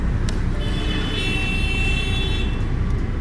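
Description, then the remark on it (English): Busy road traffic rumbles steadily throughout, with a sustained car horn blaring for a couple of seconds over the dense engine noise, along with a brief earlier honk. “Traffic. Everyone hates traffic.”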